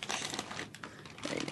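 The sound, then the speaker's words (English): A bag of gourmet popcorn crinkles as it is opened: a steady, crackly plastic rustle with sharp little pops running through the whole moment, with no voices over it. “You should go ahead and open one if you want.”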